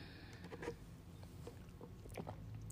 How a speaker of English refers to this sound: Okay, let me sip my drink real quick.